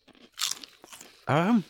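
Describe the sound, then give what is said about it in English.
Several crisp, irregular crunches of someone biting and chewing sweet, melon-scented potato crisps, followed by a short, loud, wavering voiced hum from the person eating. “Well, I'm just going to have to dive it's right crisps in.”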